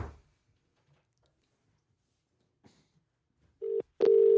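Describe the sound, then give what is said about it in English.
Near silence with a few faint clicks, then a telephone ringing out as a call is returned to whoever just phoned: a short steady tone followed by a longer one, loud, with no one speaking. “Phone him back. I'll phone whoever just phoned. I'm phoning you back, baby.”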